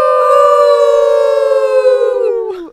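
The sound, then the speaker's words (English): A single loud wolf howl holds a steady, siren-like pitch for a few seconds, then bends downward and fades out at the end. No one speaks over it. “you like the wolf howl.”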